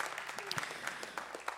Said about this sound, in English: Let's give God one more round of applause.